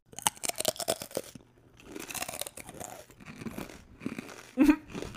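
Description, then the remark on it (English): Loud, crisp crunching of cinnamon sugar pita chips being chewed, with a quick run of sharp bites at first, then slower, grittier munching and a final hard crunch, with no voices. “Keep making them pita chips with cinnamon sugar.”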